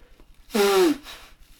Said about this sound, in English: No, I had to blow my nose for a moment. When I blow my nose, it sounds like a trumpet.